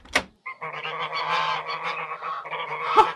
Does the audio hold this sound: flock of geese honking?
yes